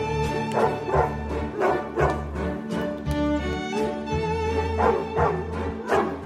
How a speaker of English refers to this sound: I'm going to mute this because we're going to get content ID'd for whatever this freaking song is. The Blue Danube Ballet Suite with dogs barking.